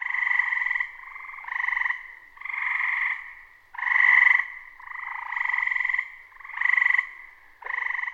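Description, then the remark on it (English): A chorus of gray tree frogs trills loudly and continuously, several overlapping callers producing repeated rising-and-falling bursts about a second long, with no voices present. “The trill of the gray tree frog has always made me think of the tropics.”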